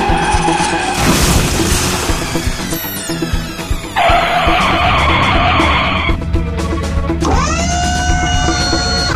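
Loud tires skid and squeal in sustained high-pitched bursts over a rumbling car engine, with a heavy thump midway and no one speaking.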